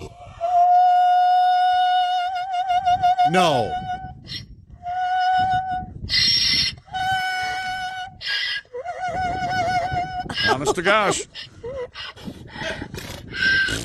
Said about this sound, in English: This is Harriet. Okay. So Harriet's been Harriet, given a treat. This is no joke. This is a donkey who sings for treats. Her name's Harriet.